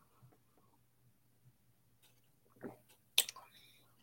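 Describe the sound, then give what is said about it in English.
A quiet sip of Founders KBS dark stout beer: a soft slurp followed by a sharper wet click and a brief airy trail, over a faint low hum with no talking. “So Founders beer and a KBS down in there. One sip.”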